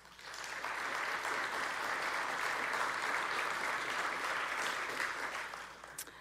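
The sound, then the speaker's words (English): A crowd claps steadily for several seconds, a dense, even patter of many hands that swells quickly at the start and tapers off near the end. The audience is clapping to show they judge an example read out to them as good, non-sinful pride. “Clap if you think this is good pride.”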